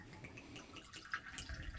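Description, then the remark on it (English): Liquor pours into a double-shot glass, filling it up for a cocktail, in a steady, faint trickle with light gurgling and a few brighter splashy drips, lasting under two seconds with no voices. “So I'm just going to go, I'm going to fill it up.”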